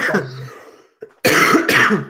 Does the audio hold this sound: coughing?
yes